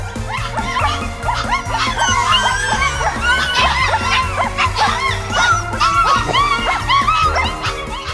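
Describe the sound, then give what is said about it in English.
A crowd of puppies yip, bark and yelp nonstop in overlapping high-pitched bursts, loud, with a low steady droning tone running underneath the whole time. “At night, they make musicals with puppies. Puppy dog musicals.”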